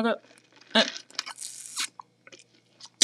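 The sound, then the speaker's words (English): Noisy sipping and slurping as someone finishes a juice drink, several irregular bursts with a longer hissy draw in the middle and short gulps after. “See that? Done. Finish the juice, finish.”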